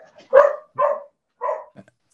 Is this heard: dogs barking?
yes